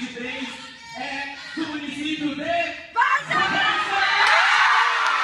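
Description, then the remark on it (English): A crowd at Brazil's Miss Gay Mato Grosso pageant cheers and shouts as the winner is announced, with whoops and yells rising over a dense wash of voices that swells louder and more sustained in the second half. “Okay, people are cheering.”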